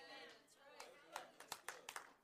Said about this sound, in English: I got 3 hand claps out of that whole thing. We ought to got at least 15 more or something.